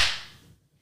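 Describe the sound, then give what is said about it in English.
A single sharp, loud slap cracks out at once and then fades quickly, standing alone with no voices around it. “The slap heard around the world.”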